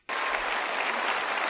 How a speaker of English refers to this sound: And they clap because they're lemmings.